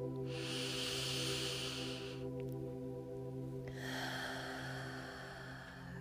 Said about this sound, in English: So go ahead and take a deep breath in.